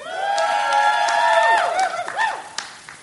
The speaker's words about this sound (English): A few guys giving some huge screams. That was great. Very nice. Thank you so much. It's kind of mellow, but that's great.